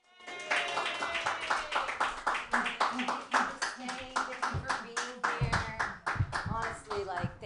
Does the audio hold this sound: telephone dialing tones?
no